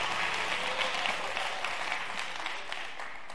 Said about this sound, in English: Give the Lord a hand clap of praise before you're seated today.